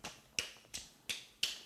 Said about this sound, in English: Let me clap.